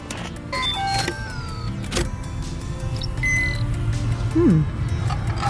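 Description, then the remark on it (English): A ship's engines, modified by its owner, start up: a steady low rumbling hum builds beneath thin whining tones, sharp clicks and a brief warbling chirp, rising slightly in loudness toward the end. “That is the best sounding engine this side of...”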